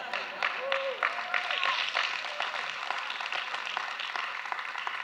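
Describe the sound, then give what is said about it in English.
An audience claps in a steady, moderately loud patter of many hands for several seconds, with a few voices calling out faintly beneath the applause. “Oh, you more than two really ought to clap.”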